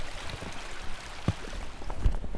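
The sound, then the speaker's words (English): A steady, hissing wash of running stream water fills the background, with a couple of brief low knocks or splashes along the way. No one speaks. “There's like water and then a fallen tree, so it...”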